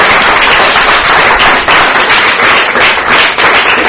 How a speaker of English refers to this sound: Let's give a nice round of applause to Lucas.